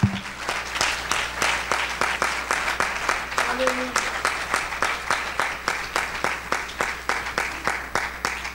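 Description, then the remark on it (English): A church audience claps together in praise to the Lord during a service, in a steady, even rhythm, many hands striking at once about twice a second, loud and sustained for the whole stretch, with a faint voice briefly underneath. “Why don't you just give the Lord a great big hand praise, a hand clap today.”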